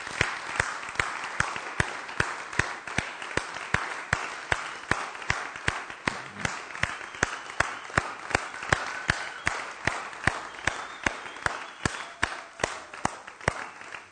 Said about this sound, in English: And this is an opportunity, I think, where we all can stand and give them a big round of applause of appreciation and gratitude. So if you join me in that.